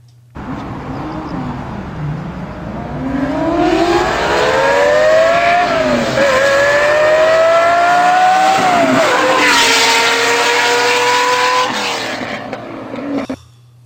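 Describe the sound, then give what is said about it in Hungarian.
A loud Porsche sports car engine revs hard, rising through several gears with sweeping harmonic climbs, then blips and growls down at the end, unaccompanied by voices. “Na csak a hörgésből gondolom, hogy valami Porsche lehetett, ahogy visszahörgött a végén.”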